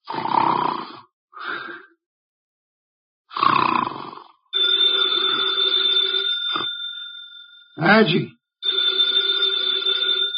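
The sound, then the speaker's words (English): A few heavy, rasping snorts, made through the nose by Nero Wolfe sitting with eyes closed in his office, give way to the telephone on his desk ringing loud, a shrill sustained jangle that stops briefly and then starts up again. “The phone, if you please, Mr.”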